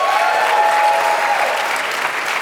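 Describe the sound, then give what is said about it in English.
A crowd at a panel at PAX East applauds steadily, a dense wash of many hands clapping at an even, fairly loud level for a couple of seconds, with a faint tonal whine running underneath. “How many round of applause if you've been to other panels this week at PAX East?”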